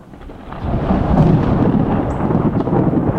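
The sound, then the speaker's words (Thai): A loud thunderclap from a lightning strike that breaks into a deep, sustained rumble rolling on for a few seconds, with no voices present. “ใจเย็นใจเย็นแค่ฟ้าผ่าก ูตกใจนี่หว่าทำไมไม่ตกใจบ้างวะ”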